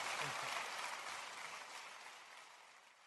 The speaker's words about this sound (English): let's give a round of applause to Randy Alcorn for coming today